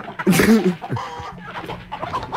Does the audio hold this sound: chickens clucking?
yes